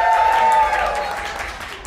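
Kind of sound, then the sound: crowd, audience cheering and applauding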